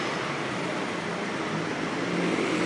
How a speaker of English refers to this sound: And here comes the number 4 bus heading for Archway Station. The Metroline, the company,